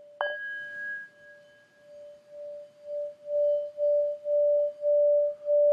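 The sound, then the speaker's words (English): A meditation bell strikes once, leaving a clear, steady mid-pitched tone that hums on and then swells in slow, even pulses, growing louder toward the end. No one speaks. “And you listen to the sound of the bell moving through time.”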